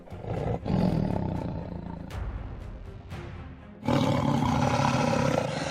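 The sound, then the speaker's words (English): A great tiger's deep, rumbling growl builds into a full-throated roar, loud, with a brief pause before a second powerful surge that fills the air. “Fear not, bird. Reinforcements have arrived, growled Marvelous as his white frame glinted in the moonlight.”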